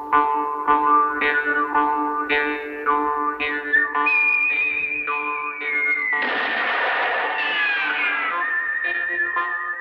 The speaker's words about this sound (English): We immediately hear the mouth harp kick off our main whistled theme.